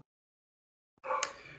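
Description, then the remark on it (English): A female dog barks once after a stretch of silence: a sudden, loud, harsh yelp with a sharp peak that trails off into a rougher, growly tail. “My dog apparently really likes Sean Waltman as well.”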